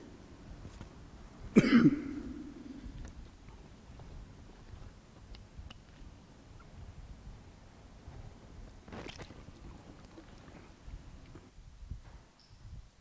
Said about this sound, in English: It's just the old sermon cough, don't be worried.